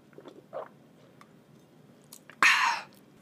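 Someone takes a sip of water: a few soft mouth and lip clicks, then a short, loud, breathy gulp and exhale lasting about half a second. No one speaks.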